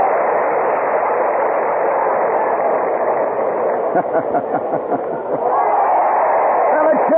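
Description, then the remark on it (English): A large crowd at a Spanish bullring cheers as Mel Ferrer presents the bull's ear to Audrey Hepburn in the stand. A loud, continuous roar of many voices, muffled and narrow like an old broadcast, with a brief dip where individual shouts stand out before it swells again. “And now Mel Ferrer, yes, he is removing one of the ears of the great beast, and he presents it to Audrey Hepburn, high in the stand. And the crowd cheers.”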